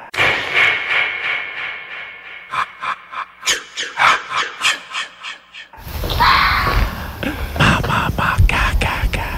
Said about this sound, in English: You can hear it, though. It's echoing through the neighborhood. It's so damn loud. It's insane. It sounds like a whisper, but it was that loud. How close were you when you recorded that to the fox?